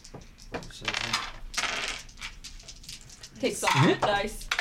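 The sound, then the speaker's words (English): A six-sided die (d6) clatters and tumbles across a hard tabletop in a quick series of sharp rattling clicks, fairly loud, with a brief voice breaking in near the end. “Rolling like a d6.”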